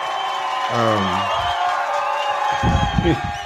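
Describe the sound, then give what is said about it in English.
A crowd cheers and murmurs in a steady wash of noise, with individual voices and whoops rising out of the din now and then, moderately loud. “and there's crowd.”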